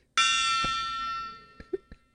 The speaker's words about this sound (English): The gong is louder in person. I'll tell you that much. It's a nice gong, isn't it? It's a nice gong, boy.